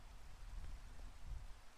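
Steady rain falls in a continuous soft hiss with a low rumbling undertone, fairly quiet and even throughout, with no voices.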